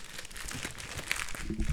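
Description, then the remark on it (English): Crinkling and tearing of packaging as someone rips open a package received in the mail by hand, a steady stretch of noisy rustling with a few sharper crunches near the end. “Rip it open with your hands.”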